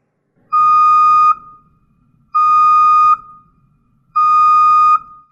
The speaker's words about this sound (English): That sounds an awful lot like the bus McDermott's talking about getting backed squarely over Marcell Dareus' ass.